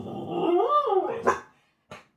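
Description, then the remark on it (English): A dog lets out a drawn-out, rising and falling bark-howl, then a sharp bark and one short final yip after a brief pause, loud with no talking. “I'm not editing that out because what a dog noise.”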